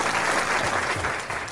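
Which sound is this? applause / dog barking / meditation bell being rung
applause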